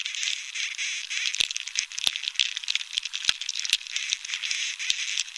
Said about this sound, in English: But without water, there's no sap, and soon the beetles are drilling and breeding and making more of a racket. Here's Dunn's recording of a moderately infested tree.